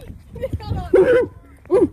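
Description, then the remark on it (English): A dog named Mafia gives two short, high-pitched yaps about a second apart, moderately loud, with faint rustling and background noise between them. “Baby, you gotta bark louder.”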